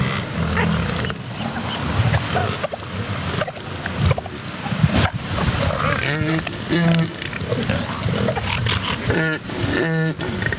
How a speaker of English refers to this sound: Vroom, vroom. And oddly, elephant seal mating sounds like an engine starting up, you know?